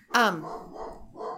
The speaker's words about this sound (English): What is that dog barking at?